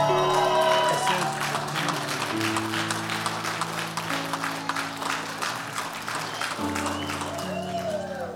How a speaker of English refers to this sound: Why are y'all clapping? You don't know if they're good or not. They're just grandparents.